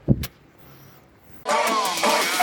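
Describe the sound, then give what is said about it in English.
A bus engine starts up: a sharp clunk, a quiet low hum, then the engine catches with a loud, steady, rumbling roar that continues to the end, with no talking. “Vamos el autobús.”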